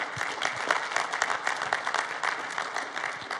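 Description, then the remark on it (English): A church audience claps steadily and densely, many hands blending into a continuous, even wash of applause with no voices standing out, clapping to welcome first-time visitors. “If this is your first time here, we just want to honor you, and we do that around here by clapping for you.”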